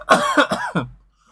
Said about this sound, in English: It's a really dry cough.